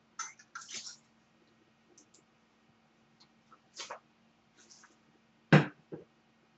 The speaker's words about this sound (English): And before I start, I just need a drink of water here.